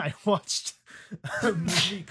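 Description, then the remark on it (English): A sharp, breathy sneeze bursts out, overlapping a person talking in a normal voice just before and around it. “bless you”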